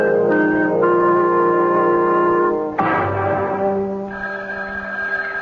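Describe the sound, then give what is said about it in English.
A telephone rings with a steady, sustained metallic tone for a few seconds, then cuts off abruptly, followed by a lower, softer ringing tone with faint background noise. “Stay near that phone, I'll call you back.”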